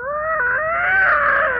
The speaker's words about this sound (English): It sounds like a really pissed off cat.